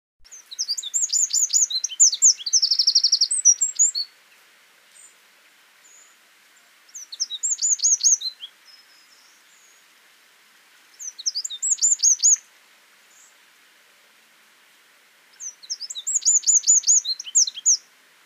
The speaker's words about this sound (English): It has an enormous voice for its size, 10 times louder weight for weight than a cockerel, and it has been suggested that if the wren was the size of an ostrich and its song was equally magnified, it would shatter our eardrums.